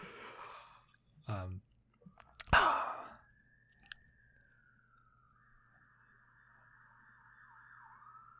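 An emergency vehicle siren wails steadily as it passes outside, a long sustained tone that drifts slightly in pitch, following a few brief human vocal sounds and a sigh at the start.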